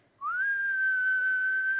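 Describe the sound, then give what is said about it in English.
A person whistles a single sustained note that rises briefly at the start, then holds steady and clear at one pitch for nearly two seconds, fairly loud with no talking. “If you do whistle, on the count of three, I'd like for you to do that. Just give me one long single note burst like this.”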